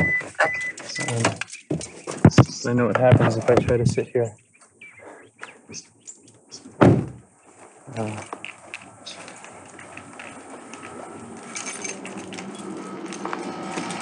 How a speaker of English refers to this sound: If it's all right with you, I'm gonna jump out of my car and go inside. It might just be some rustling around for a moment.